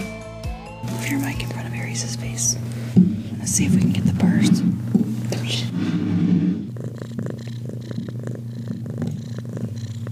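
A cat named Aries, wearing a big cone, purrs steadily for the whole stretch while being scratched, a low continuous rumble, with soft breathy murmuring from a person drifting over it now and then.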